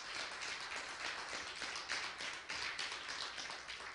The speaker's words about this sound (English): Give them a hand clap of praise real quick.